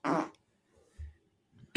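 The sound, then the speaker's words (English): A short, loud, buzzy fart sound bursts out at the start, followed by a quieter low rumble a moment later, with no talking over it. “Are we playing the game soundboard or ass?”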